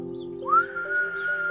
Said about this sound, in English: Oh, sure, he thought, like I'm going to come running like a dog when she whistles. He heard her whistle again.